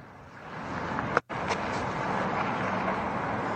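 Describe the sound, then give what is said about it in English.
A car crashes into another vehicle with a sudden sharp crunch, then a second smaller knock, over steady road and engine rumble. Nobody speaks. “Oh, these motherfuckers gonna cause an accident right here.”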